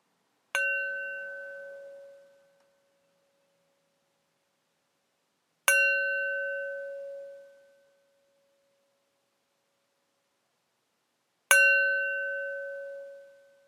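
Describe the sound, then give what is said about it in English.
A bell is struck three times at slow, even intervals, each clear tone ringing out and fading away over a couple of seconds, with silence between strikes and no voices. “May the clarity of the sound of this bell invite clarity of body, mind, and spirit.”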